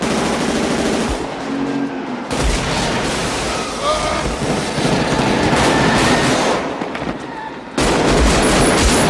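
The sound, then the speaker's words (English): Loud, sustained bursts of rapid automatic gunfire from a movie bank heist shootout crackle almost nonstop, with sharp overlapping shots and echoing reports, pausing only briefly twice before resuming at full intensity. “The sound of the bullets of the that's how guns sound.”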